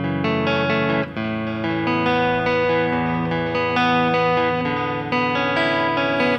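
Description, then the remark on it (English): A clean electric guitar plays a flowing riff of ringing notes and arpeggiated chords, steady throughout, with a shimmering chorus-like wobble and no voices. “So like that stuff, he ran JC120 as his clean sound.”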